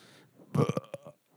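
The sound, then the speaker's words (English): A single loud burp with a rough, croaky onset that breaks into a few guttural pulses before trailing off, heard on its own without any talking. “We got our burp bid on this one. That did get recorded.”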